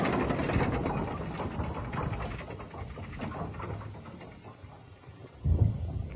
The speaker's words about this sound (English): There was the sound of rattling chains and of massive bolts drawn back.